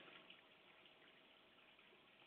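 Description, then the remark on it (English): Steady, continuous trickling of water from a working aquarium filter on a fish tank, an even babble of running water with no pauses and no voices. “And then I realized the filter's not working. And the filter also oxygenates the water.”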